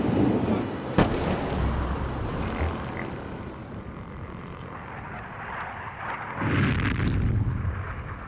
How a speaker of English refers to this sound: Night of 13th to 14th of July, 2006, 4 a.m. The Israeli Air Force flies over Beirut. Far away, we hear bombs falling down.